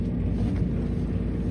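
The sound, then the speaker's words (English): A steady, low mechanical rumble and grind of old elevator gears turning as the car descends further into the earth, holding an even level with no pauses and no voices. “It was from a time before Muzak, so we were left with the grinding of gears as we descended further into the earth.”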